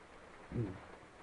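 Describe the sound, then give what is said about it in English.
Steady rain hisses softly and evenly throughout, a faint wash of falling water with no pauses, briefly joined near the middle by a short low murmur that could be a voice. “Or if I don't create any suffering, then there's just the sound of the rain.”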